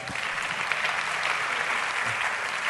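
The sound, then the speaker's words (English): A crowd claps steadily, a dense wash of overlapping hand claps at an even loudness with no single beat standing out, and no voices on top. “Are you clapping? You are clapping.”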